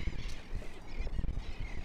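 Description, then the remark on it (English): A large flock of geese honking together, a dense overlapping chorus of calls that continues steadily throughout, moderately loud with no talking. “Yeah, that's a big flock.”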